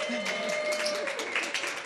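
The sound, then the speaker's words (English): An audience claps steadily for a couple of seconds to welcome a pastor coming up to speak, a dense, continuous patter of many hands, with a voice speaking faintly underneath. “Yeah, we can clap for her.”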